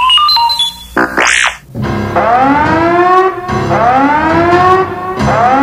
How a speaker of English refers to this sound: An alarm begins to sound, interrupting their reunited friends' conversation. What's that? That's our Imperial signal scanner. It scans for Imperial communication wavelengths. Looks like it found something.